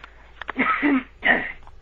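human body sound, throat clearing

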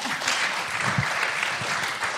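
crowd, audience applause

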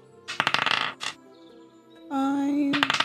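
dice being rolled

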